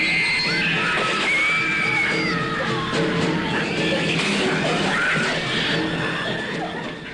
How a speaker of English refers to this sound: Rats, everyone agrees, are the enemy, as you can hear in this trailer from Deadly Eyes, a 1982 Canadian horror film based on the James Herbert novel The Rats, in which deadly rats consume Toronto residents in the dead of night.